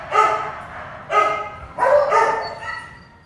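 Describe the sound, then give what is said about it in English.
Dogs barking in cages at a CACC animal shelter, secretly recorded in June 1996 with a hidden mic and DAT recorder: sharp, loud bursts, about four barks in close succession with brief pauses between, with no voices. “He shuffled quietly along the corridors, 2A, 2B, 3A, 3B, photographing every single dog in every last narrow, dingy cage stinking with piss and fear.”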